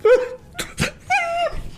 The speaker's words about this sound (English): Dog's freaking out in the background.